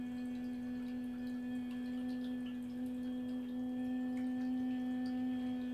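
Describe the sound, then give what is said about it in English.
A steady, unbroken hum holds one low pitch for the full length, even and sustained, made while breathing out during a guided breathing exercise, with no words spoken over it. “And while breathing out, looking deep inside the forehead, start the humming sound.”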